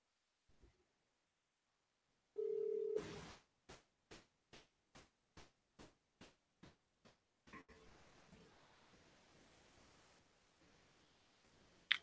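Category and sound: signal or alarm, phone call dialing tones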